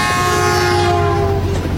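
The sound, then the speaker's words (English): A train horn blares loudly and steadily over the heavy rumble of a passing train, the tone holding throughout before easing off right at the end. “when the brilliant light of the ghost train burst out of nowhere, blinding us.”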